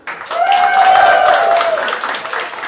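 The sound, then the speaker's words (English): An audience claps and cheers for a couple of seconds, a dense, steady wash of applause with a sustained vocal whoop riding over it before it tapers slightly. “All right, so make some noise.”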